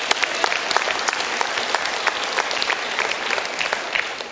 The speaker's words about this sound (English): Great day in the morning. Somebody clap.